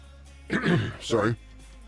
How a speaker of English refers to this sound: I know that, but sometimes I don't know I'm going to cough.